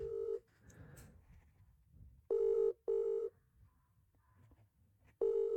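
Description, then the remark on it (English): The ringback tone of an outgoing phone call placed to see if one person answers: a steady, buzzy mid-pitched tone in a double-burst pattern, repeating with pauses between, over faint background noise and no talking. “I'm gonna call one person and see if they answer.”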